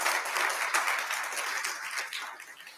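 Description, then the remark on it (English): An audience claps for the people joining online as a live stream begins, a dense, steady burst of applause, many hands overlapping into a continuous crackling wash that holds at an even level before tapering slightly at the end. “All right, let's clap it up for the people that are joining us online.”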